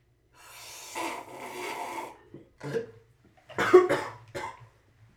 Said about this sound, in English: Dude, you're drinking iced tea, dude. I'm drinking this Arizona green tea thing. He's coughing on iced tea. Peach tea, too.